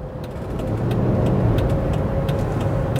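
road traffic passing

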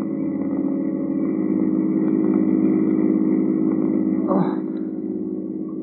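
car engine running

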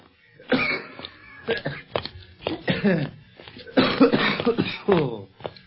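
man's coughing fit

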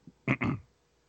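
hiccup

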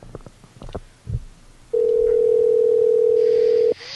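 telephone dial tone

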